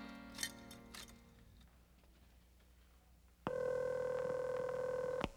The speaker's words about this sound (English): Charlie stops at a phone booth and calls in to report his seeming success